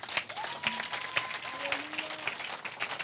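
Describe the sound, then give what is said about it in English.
A church audience breaks into steady, dense applause for Jesus, many hands clapping at once with a few voices calling out over it, lasting a few seconds. “Clap for Jesus.”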